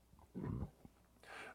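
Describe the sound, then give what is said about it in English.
A big dog gives a short, low, rough vocal grunt during a DoorDash delivery, followed a moment later by a breathy, hissing wheeze. Both sounds are fairly loud, with no talking. “I guarantee you, the people that own that dog weigh 722 pounds.”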